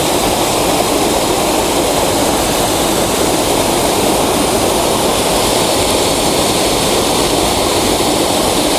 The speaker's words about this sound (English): So I have to sacrifice some of the waterfall.